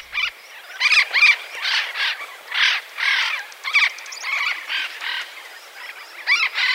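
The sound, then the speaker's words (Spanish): A string of harsh, raspy squawks from a parrot of the Andes repeats in quick, uneven bursts, fairly loud, with no one talking and only faint background between calls. “En el 97, este loro parecía estar extinto, pero un número pequeño sobrevivió en las altitudes de los Andes y lo encontraron allí en el 99.”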